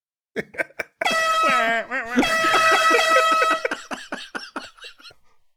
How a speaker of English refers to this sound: Where's that air horn?